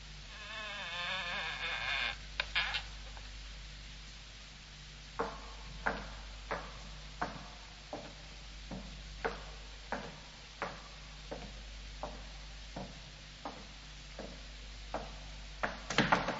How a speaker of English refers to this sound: Well, here's the door. I'll use the skeleton key. Ah, yes, that's it. Now, quietly, my dear fellow.